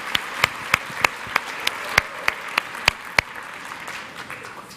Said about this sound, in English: All right, let's give them one more round of applause as I escort them off stage. Thanks.